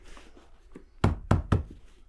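Three loud, heavy bangs on the floor of a house near a beehive land in quick, even succession, each a deep booming thud, after a single faint knock. No one speaks.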